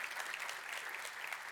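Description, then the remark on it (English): A crowd claps steadily, a round of applause for the Dream Team volunteers who served at Kids Week, a dense, even wash of many hands with no pauses and no voices standing out. “If you served on the Dream Team for Kids Week, let's give you a round of applause.”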